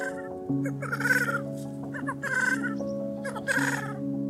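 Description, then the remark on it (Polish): Black grouse calling in the Tatra National Park, Poland: a steady, low bubbling coo drones throughout while several louder, harsher hissing calls burst in every second or so, without any talking. “W Polsce cietrzewie są na granicy wymarcia.”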